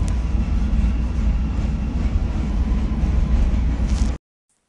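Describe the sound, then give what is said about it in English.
A subway train rumbles along at steady speed after its doors close, heading to Fullerton station, a loud continuous low roar with rattling hiss filling the cabin, then the sound cuts off abruptly near the end. No one speaks. “Fullerton is next. Doors open on the right at Fullerton. Transfer to Brown Line trains at Fullerton.”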